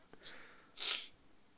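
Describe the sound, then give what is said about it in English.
A single sharp sneeze, preceded by a brief hissing intake of breath, then quiet. “But I'm going to sneeze.”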